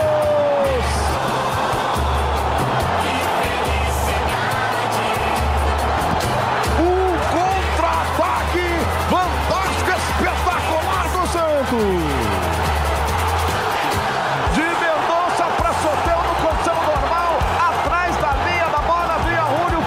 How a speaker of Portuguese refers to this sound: Vira o Santos da Vila Belmiro, explode a torcida do Peixe na Vila, aos 44 do segundo tempo, Julio César Furti bota na rede para a virada do Santos